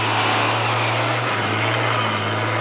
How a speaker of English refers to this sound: What's that? Sounds like the truck they were talking about. There it is. The headlights. It's coming this way.